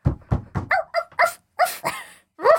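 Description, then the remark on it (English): A dog barks in a quick run of about nine sharp yaps, starting with a few low, thumpy woofs and moving into higher, brighter barks, loud and with no voices over them. “And Ruth hears and the dog.”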